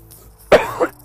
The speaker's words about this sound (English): this mic is like right next to my my mouth. Oh, but you know why I'm coughing? Because I'm walking, I'm pacing.